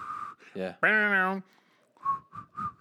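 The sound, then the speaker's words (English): Someone whistles a short, wavering rock song melody, a steady tone sliding between a few pitches, broken by a brief burst of voice and ending in several quick whistled notes. “I can't whistle worth shit.”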